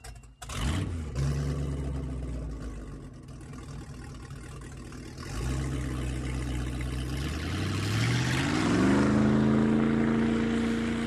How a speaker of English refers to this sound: Yeah, did you hear that bus leave?